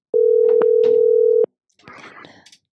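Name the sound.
telephone ringing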